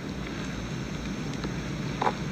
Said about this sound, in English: That's the Duke. I know the sound of his engines.